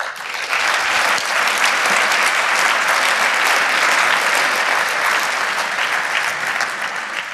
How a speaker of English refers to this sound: Thank you all for that round of applause.